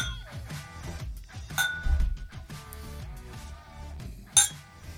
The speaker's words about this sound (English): So raise your glass. And cheers to Jesus.